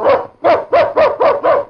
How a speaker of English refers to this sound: He sat on a boulder and scuffed his foot in the dirt as he stroked Duke's smooth coat. Suddenly, the dog growled and barked as 2 horsemen approached.